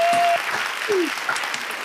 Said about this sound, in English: Now, on that note, let's have a round of applause for a wonderful presentation tonight.